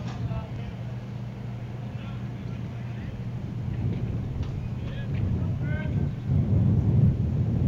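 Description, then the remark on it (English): Breezy wind buffets a microphone at a baseball game in a low, steady roar that swells louder toward the end, with faint crowd murmur and scattered voices underneath. “You can hear that wind kicking up in our crowd”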